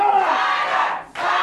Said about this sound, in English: Listen to the crowd.